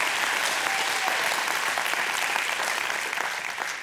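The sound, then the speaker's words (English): An audience breaks into sustained applause, a dense, steady wash of many hands clapping at once, holding level loudness and easing slightly toward the end. No voices stand out. “Well, a couple of you clapped. I think the rest of you ought to.”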